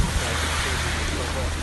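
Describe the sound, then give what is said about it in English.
A steady, continuous wash of ocean waves on a private beach surrounded by caves and trees, fairly loud, mixed with wind rumble and a low, constant hum underneath. “Yeah, we've made it to this private beach, which is so lovely.”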